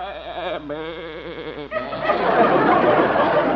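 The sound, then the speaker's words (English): A goat named Arthur McGoat bleats in a long, quavering cry with a pronounced wobble, then a loud, sustained wash of crowd noise takes over. “You're sure fond of that goat, aren't you, Doc?”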